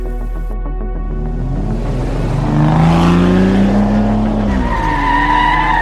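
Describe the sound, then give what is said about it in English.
A car engine roars as the driver floors the accelerator and takes off hard, its pitch climbing steadily while the tires squeal and skid on the dirt, sending dirt flying, loud and continuous with no voices. “And then I heard the car just take off behind me. He put the foot to the floor.”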